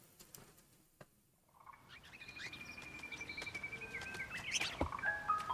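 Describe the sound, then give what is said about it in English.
Small birds, blue robin-like birds with huge fuzzy heads, chirp and whistle in a synthetic video game soundscape, with thin sustained tones and a quick burst of bright tweets near the end. No one is talking. “We got little birds with, they're like blue robin looking birds, but with huge fuzzy heads.”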